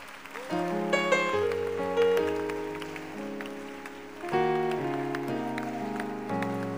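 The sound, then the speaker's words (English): A crowd claps steadily, the hand claps forming a dense, hissing patter beneath loud sustained organ-like chords that shift pitch every second or so. No one speaks. “Keep clapping.”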